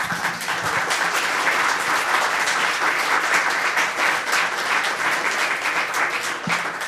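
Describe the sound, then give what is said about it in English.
Sustained audience applause after Will Fantel's talk at the Northern Spirit Radio membership banquet, a dense, even wash of many hands clapping at steady loudness for several seconds with no voices standing out. “I hope you're applauding Will Fantel's talk along with all the folks at the Northern Spirit Radio membership banquet last year, where Will was one of our main presenters.”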